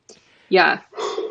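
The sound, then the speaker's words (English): A dog gives two short, loud barks or whining yelps in quick succession, each cutting off abruptly, with a faint sound just before the first. “Oh, I think pandemic your dog wants to go puppy. for a walk or something.”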